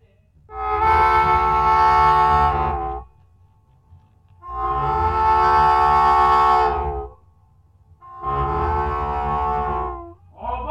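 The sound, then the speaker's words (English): Slow 1957 blues song with simple harmonica riffing: three long, loud, wailing harmonica chords separated by short pauses, mimicking a train whistle over a low, steady backing, with no singing yet. “that generally had a slower pace and simple kind of harmonica riffing”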